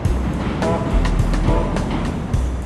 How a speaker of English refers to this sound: So, we are on the Chicago River. We're in what's considered the main stem on the Riverwalk, right in downtown Chicago. As you can probably tell by the noises.